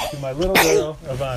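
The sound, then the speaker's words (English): A single sharp, loud sneeze bursts out midway through a woman's steady speech, briefly cutting across her voice before the talking carries on. “Oh, it's dedicated to you. Bless you.”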